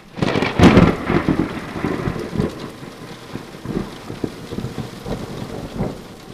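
A thunderstorm rumbles, with a heavy thunderclap early on followed by rolling low booms, while steady rain patters and crackles throughout with no voices.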